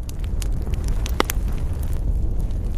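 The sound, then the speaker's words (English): A large bonfire burns at the top of a mountain with a steady low roar, sharp pops and crackles scattered irregularly throughout, one especially loud snap near the middle. “Finally, they reached the top of the mountain and there was a large bonfire burning.”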